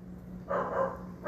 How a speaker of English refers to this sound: You hear my dog's barking outside. Somebody must be walking by.